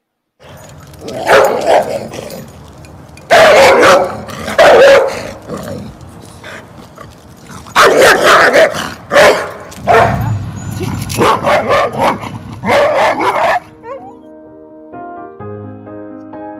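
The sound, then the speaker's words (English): Several bursts of dog barking in quick clusters, loud and played from a video recording, with pauses between volleys, ending in a few soft musical tones. “This is the same dog right there in the middle.”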